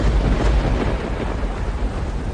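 A loud, deep thunder rumble rolls on steadily for a couple of seconds, heavy in the low end with a dense roar on top and no voices.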